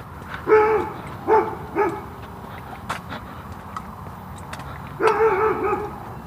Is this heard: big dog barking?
yes